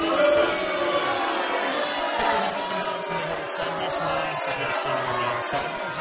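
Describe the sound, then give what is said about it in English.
A large crowd booing loudly and continuously, a dense, sustained wall of jeering voices that swells slightly without letting up, aimed at Andrew Bolt. “Give him a booing.”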